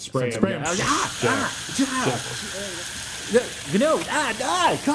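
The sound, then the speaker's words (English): Short hissing bursts of a spray bottle with faint trigger clicks, spraying liquid down the top half of a shirtless man to decontaminate him, under steady background hiss while people talk and exclaim over it. “We're going to spray that down the top half of him and just remind ourselves not to step where he stepped.”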